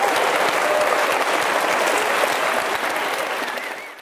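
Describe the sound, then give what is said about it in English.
A crowd applauds the presenters at the close of a talk, a dense, loud patter of many hands clapping that holds for several seconds before starting to thin out toward the end. “I want to greatly appreciate your attendance here, and please let's give a warm round of applause to our presenters.”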